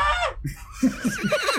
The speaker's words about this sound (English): That's his neigh.